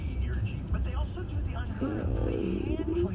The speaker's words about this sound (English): I'm almost gonna fall asleep right now in the car.